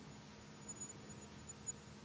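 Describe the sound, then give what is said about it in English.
A faint, piercingly high sine tone holds steady for about two seconds over a low hiss, like a hearing-test beep at the top of the audible range, with no one speaking. “Okay, well, I'll go to 18,000. Maybe you've got dog hearing.”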